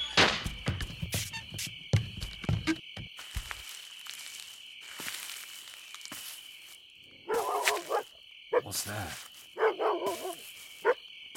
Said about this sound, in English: What's that? Why's that damn dog still hanging around?